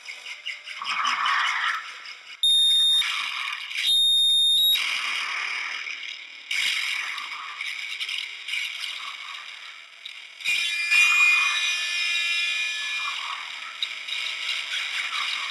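Harsh noise music: dense, grinding rattles and metallic scraping fill the track, cut by piercing high-pitched electronic squeals and abrupt shifts, loud and abrasive throughout with no voices.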